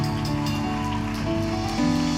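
A crowd claps hands in praise of the Lord in a steady, dense wash of applause lasting a couple of seconds, with sustained keyboard chords holding underneath and shifting once near the end.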